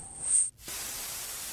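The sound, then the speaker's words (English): A hissing burst with a brief high whine cuts out for a split second, then resumes as a steady, airy hiss as a pod is opened, with no voices. “No, it was actually Tithia opening the pod”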